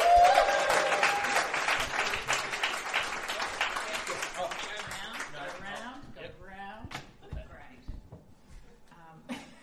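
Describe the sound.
An audience applauds a singer coming on stage to play a song, with dense, crackling clapping that starts loud and gradually thins and fades, giving way to a few scattered claps and murmuring voices by the end.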